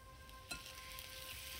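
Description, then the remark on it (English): Eggs sizzle and crackle in hot oil in a frying pan, a steady hiss with one sharper pop early on and a faint electrical hum underneath; no voices. “My hands twitch as I crack the eggs into the frying pan, and flecks of shell go everywhere. I watch them splatter in the hot oil.”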